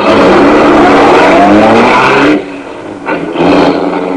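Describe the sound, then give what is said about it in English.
A loud car engine roars with rushing, revving noise for a couple of seconds as the car is driven away out beyond the city limits, then drops off sharply, with a brief surge before it fades back down. No one speaks. “I drove my car out beyond the city limits, put it in a public garage”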